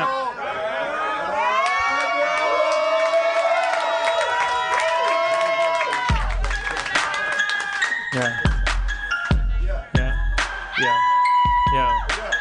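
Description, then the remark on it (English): A crowd lets out a long, rising cheer of many voices, then breaks into a burst of applause and shouting, punctuated by a few heavy thumps before the cheering swells again. “I probably sum it up in something that you can applaud to, like a yeah.”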